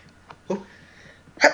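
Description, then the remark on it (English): A quick nasal catch is followed by a short pause, then a single sharp, loud sneeze bursts out at the end, with no talking around it. “So I'm sorry. God bless you.”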